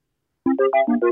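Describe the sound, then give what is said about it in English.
A bright electronic Snapchat outgoing call ringing tone, a quick run of about six short melodic notes starting after a brief silence, clear with no voices. “Oh, is it Snapchat? It's Snapchat.”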